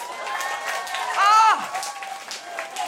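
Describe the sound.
Scattered audience applause at a feminist comedy show rustles under crowd murmur, with a man in the audience applauding himself and a voice rising briefly over the clapping midway before the noise settles back to a steady, moderate patter.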